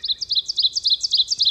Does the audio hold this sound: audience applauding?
no